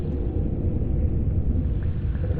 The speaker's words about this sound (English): So water was falling from the ceiling and hitting the top of these buckets, and they're sending up this big echoing rumble. It was like a kind of whale song. It's a sound I haven't encountered since.